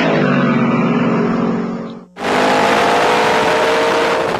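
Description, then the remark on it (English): A Mustang Mach 1 with the air induction V8 option and a poke-through air cleaner revs loudly, a steady throaty roar that drops off briefly midway, then surges back in with a harsher, fuller rumble. No one speaks. “An 8 so hot performing, it comes with its own poke-through air cleaner that jumps when the engine grinds. Mustang Mach 1.”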